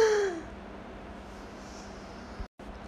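A short, sharp gasp at the start, a quick breathy intake of air as a soldier unrolls some paper in a forest, followed by near silence with a faint steady hiss and a brief dropout near the end.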